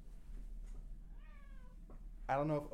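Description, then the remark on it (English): A cat named Otis meows twice: first a soft, thin, wavering cry, then a sudden loud, harsh, drawn-out yowl at the end, over a steady low background hum. “Can you hear him screaming down here?”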